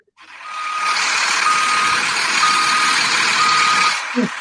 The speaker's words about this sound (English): Y'all hear that? That's the Brinks truck backing up because Paul George got paid.